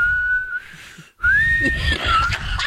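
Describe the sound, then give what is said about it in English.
A man whistles a slow, steady tune, holding long sustained notes that bend and glide, with a brief pause midway and low background rumble throughout. “Oh, I hated that whistling.”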